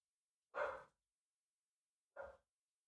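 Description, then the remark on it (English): A dog, Blue, barks twice with a pause of over a second between them, the second bark shorter and softer than the first. No one speaks. “An occasional bark. That's just kind of what you get.”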